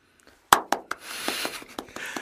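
A jazz trumpeter claps his hands: a series of sharp hand claps, about nine in quick, slightly uneven succession, the first loudest and the rest softer, with no voices.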